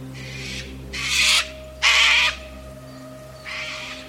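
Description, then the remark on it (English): A white cockatoo at the top of a tree at dawn screeches four times, each call a harsh, raspy burst about half a second long, loud and evenly spaced, with a faint steady low hum underneath for the first part. “When discussing what they would do in whispers, a white cockatoo fluttered to the top of a tree, standing quite close to where the black demon lay asleep, and screeched his welcome to the coming day.”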